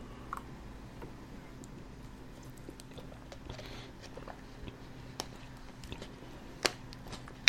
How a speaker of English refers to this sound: Sipping my water real quick, because I'm hot.